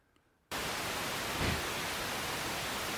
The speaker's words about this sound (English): Here, I'm going to play some white noise, and if it comes through... Okay. If it comes through, everybody will hear it.